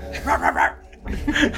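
A dog barks in a quick run of three sharp yaps, pauses briefly, then lets out a higher, drawn-out howling bark, fairly loud with no talking over it.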